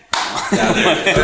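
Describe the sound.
Hands clapping in a quick, dense burst that starts abruptly and carries on steadily for about a second, fairly loud, with voices talking underneath.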